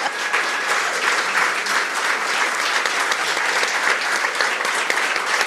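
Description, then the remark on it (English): An audience at a book event claps loudly and steadily for author Miff Warhurst, a dense, continuous wash of many hands applauding without pause for several seconds, with no voices standing out. “Can you please give a very big round of applause to the one and only Miff Warhurst?”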